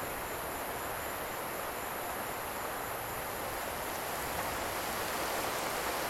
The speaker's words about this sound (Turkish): Bunu düşünürken şimşek çaktı. Kafamı kaldırdım. Suratıma bir yağmur damlası çarptı. Gökyüzü bir anda ipinden boşanıp etrafı ıslatmaya başladı.